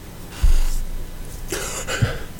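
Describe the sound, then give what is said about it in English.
A deep, breathy inhaling yawn: a long airy draw of breath followed by a second, stronger rush of air and a soft exhale, with no talking. “Did you just hit an inhaler? No, I just yawning is still kind of tricky.”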